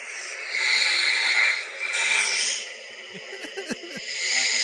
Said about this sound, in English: That's quiet snoring. Then it's got medium level snoring. And then it's got epic snoring.